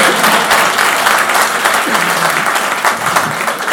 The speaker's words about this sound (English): So I dedicated to the daughter. Amen. Yeah, I did. You can clap your hands.